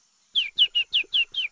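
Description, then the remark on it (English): A small bird sings a clear, sweet phrase of six quick descending notes in an even rhythm, fairly loud, with no voices around it. “She is singing a beautiful song while combing her feathers.”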